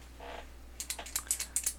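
Crisp rustling as sheets of paper are rubbed together in a quick series of short strokes as an ASMR experiment, after a faint soft swish at the start. No one speaks.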